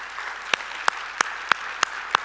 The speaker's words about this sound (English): Can we give these folks a round of applause?